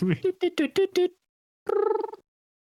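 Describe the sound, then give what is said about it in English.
A voice imitates a phone being dialed to call a friend, a quick run of short beeping tones, then after a brief pause gives a warbling, trilled ring, fairly loud. “Game Show co-host, can I phone a friend?”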